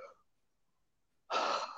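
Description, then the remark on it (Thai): A voice imitates a harsh, gasping breath of the kind to be treated as not breathing when checking for cardiac arrest before CPR: after a faint breathy start and a short pause, one loud, raspy inhalation lasts about half a second, alone. “กับอันที่สามคือที่ดีสุดคือดูการหายใจนะครับง่ายสุดเลยถ้าเกิดว่าเราดูแล้วเนี่ยภายใน10วินาทีเนี่ยไม่หายใจนะครับหรือหายใจแบบ”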